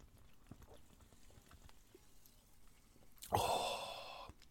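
After a few seconds of near silence, a loud, airy slurp of a cold Old Jamaica ginger beer, extra fiery, bursts in and carries on, hissy and wet, until the end. No one speaks.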